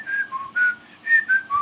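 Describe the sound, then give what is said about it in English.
Someone whistles an imitation of a mobile phone ringtone: a quick, bright melody of about six short notes hopping between a few pitches, loud and clear with no talking. “mobile phone rang during our conversation. You probably heard his ringtone.”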